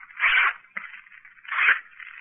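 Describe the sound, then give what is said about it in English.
Three strips of paper being torn to draw lots: two louder, drawn-out ripping bursts joined by a ragged, softer tearing rasp, with no voices. “Now I'll tear three strips of paper.”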